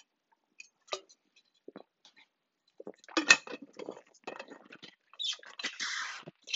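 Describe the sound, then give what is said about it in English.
Hard little clinks and rattles clatter, a few scattered taps at first and then a denser tumble of clinking as ice cubes drop into a container for a drink. No one speaks. “Have some ice cubes”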